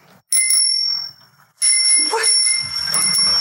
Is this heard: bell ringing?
yes